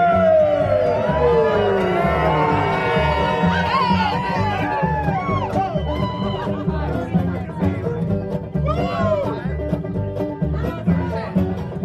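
A live audience cheers loudly and continuously as band members are introduced at a live performance, full of rising whoops and shouts over a dense roar of crowd noise, with applause mixed in throughout.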